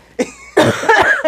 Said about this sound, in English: So I have to cough again.